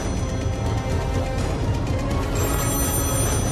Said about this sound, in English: 3 o'clock, I called Paul, and it just rang and rang and rang.